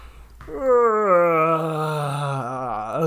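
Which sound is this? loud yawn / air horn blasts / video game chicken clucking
loud yawn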